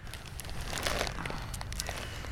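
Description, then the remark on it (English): String cheese being peeled apart, a soft, continuous stringy tearing dotted with small crackles and faint crinkles for a couple of seconds, with no one speaking. “They peel so satisfyingly.”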